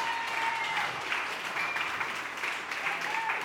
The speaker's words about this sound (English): Can we just give Cody a round of applause?